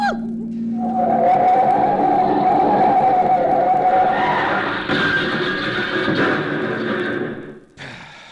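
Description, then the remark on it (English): Tires squeal loudly for several seconds as a speeding car skids hard, the shrill screech wavering and rising in pitch before cutting off abruptly, with a brief rumble after. “Well, have you ever tried to stop a speeding car with an unconscious girl flopping all over you?”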